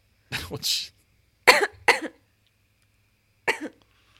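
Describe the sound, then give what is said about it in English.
A person coughs in several harsh, sputtering bursts after choking on a drink, a double cough followed by two quick ones and a final lone cough after a pause, fairly loud with no talking. “I'm just glad you're coughing because it means you're breathing.”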